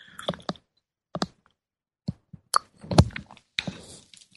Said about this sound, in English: So I'm going to have a sip of my tea right now.